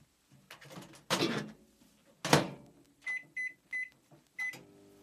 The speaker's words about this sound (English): You're going to put them into a heatproof bowl and then you're going to put them in the microwave for about 30 seconds.